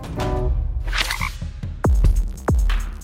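A frog croaks twice, loud, each croak a deep, drawn-out pulse a little over half a second apart, after a stretch of softer, busy background noise.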